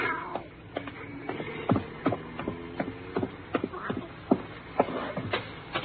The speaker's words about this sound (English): something jumped at me and landed in my lap. It was the cat.